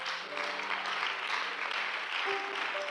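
A crowd claps steadily for the full three seconds, a dense, even patter of many hands at a constant loudness, with faint sustained tones humming underneath.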